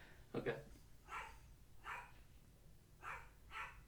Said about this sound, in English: Let me just wait and see if my grandpa's dog is going to stop barking.